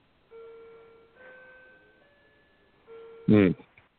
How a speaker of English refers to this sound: But my clock is beeping. It's 5 minutes fast.